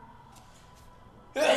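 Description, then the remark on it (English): After a second of near-silence, a single sudden, loud sneeze bursts out, sharp and breathy, cutting off abruptly at the end. “Bless you.”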